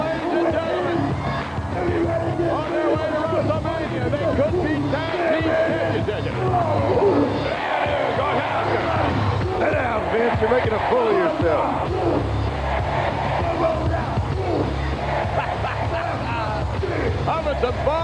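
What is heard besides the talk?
crowd cheering and shouting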